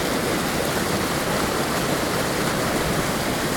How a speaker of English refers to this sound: Now, aside from Panther Creek Falls, this is one of the nicest waterfalls I've been to.